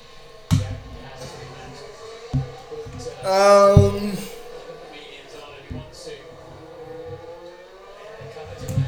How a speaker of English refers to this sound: No, but they're just ripping through the corners and turns and swivels of this course as the mics get closer to the engines, and then we can hear them roar.